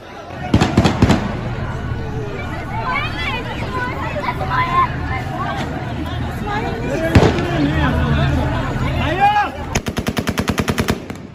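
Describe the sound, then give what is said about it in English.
Bursts of rapid gunfire crack out over a noisy crowd in Kabul, Afghanistan, as the Taliban enter the city, a short volley near the start, a single sharp shot midway, and a fast rattling burst near the end. “Gunshots can be heard as the Taliban encroaches upon the remaining strongholds of U.S., NATO, and Afghan government forces.”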